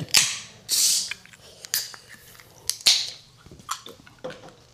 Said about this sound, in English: Oh, here, wait. I'm gonna open my water bottle. I do that all the time.